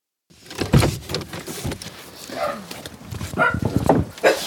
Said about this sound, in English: I forgot that he barks when he hasn't met people before.